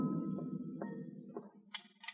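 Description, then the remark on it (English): A few knocks on the office door of the Brawley Shipping Company, spaced unevenly over a low rumbling background, followed by sharper, brighter clicks near the end. “I knocked on the door, drew my gun, then I stepped back and waited.”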